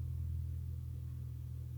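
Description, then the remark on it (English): A steady, heavy low-pitched rumble of an airplane flying low overhead, droning evenly throughout with no talking. “Did y'all hear that plane flying over me low?”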